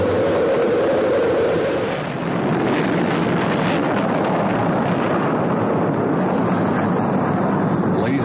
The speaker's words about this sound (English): 7, 6, 5, 4. We've gone for main engine start. We have main engine start.